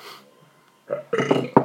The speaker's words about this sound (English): I'm sorry, I burped, please.